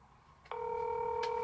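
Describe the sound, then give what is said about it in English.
A short click, then a steady electronic telephone tone starts and holds, clear, with another faint click partway through; a line going dead after the other end hangs up. “And it just hung up.”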